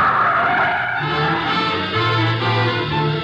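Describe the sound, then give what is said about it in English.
A car brakes hard, tires squealing and skidding loudly across pavement before the engine settles into a low idle as the vehicle comes to a stop. “Stop the car.”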